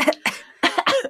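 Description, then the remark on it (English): A person fakes a cough: four short, breathy bursts in quick succession, fairly loud, with an exaggerated, theatrical quality and no other talking. “And maybe like Russell was getting sick, but it was the coughing. I'm like, I could have done a better job.”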